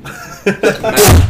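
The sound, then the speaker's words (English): A sudden, loud sneeze bursts out after a couple of short breathy sounds, a sharp explosive blast that quickly fades. “Bless you.”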